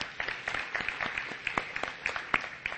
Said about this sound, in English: And so I'm just thankful this morning for our young people and just their stance for Jesus Christ. So, again, I think give them a round of applause this morning for serving.